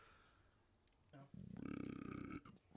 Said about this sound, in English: That's a Spillmatic burp brought to you by Short Throw Brewing